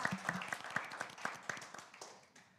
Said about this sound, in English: Congratulations. Clap, clap, clap.